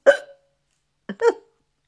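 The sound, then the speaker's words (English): Two sharp hiccups separated by about a second of silence, each a short voiced gulp with no other sound around them. “So if I pause occasionally, like just now, it's probably a hiccup.”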